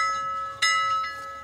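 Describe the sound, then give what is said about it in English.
A ship's bell rings with a bright, sustained metallic tone, struck again partway through so the chime swells, then slowly fades; clear, with no voices. “You know what that boat bell means? Nautical trivia.”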